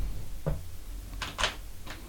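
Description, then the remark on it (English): Dice clatter across a table as they are rolled for a player's stats in a tabletop game, a few quick, irregular bursts of hard little clicks, fairly quiet, with no one speaking. “let's roll your stats.”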